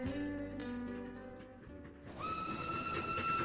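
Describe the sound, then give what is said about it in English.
A train carriage rolls along the rails with a steady low rumble, while sustained whistle-like tones sound throughout and shift to a higher pitch partway through. No voices. “I studied the train compartment.”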